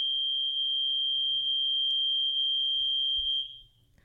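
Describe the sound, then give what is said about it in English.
A loud, piercing high-pitched alarm tone holds steady for about three and a half seconds, then abruptly cuts off, leaving only faint low background noise. “There was like a fucking alarm going off.”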